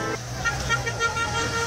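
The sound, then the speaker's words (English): Busy street traffic at a street corner in Brazil, with a steady roar of engines and overlapping car horns honking, a dense, continuous wash of road noise. “No, this is just the street corner in Brazil.”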